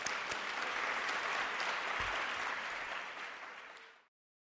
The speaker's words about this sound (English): This is all made possible with our wonderful partners in this lecture series, the Open Society Baltimore. Let's please give them a round of applause here.